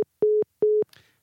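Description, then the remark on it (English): A steady telephone tone sounds after a caller's call is dropped, in short repeated beeps: two clear pulses with even gaps like a disconnect signal, followed by a faint rustle. Fairly loud, with no talking. “And the call has been dropped.”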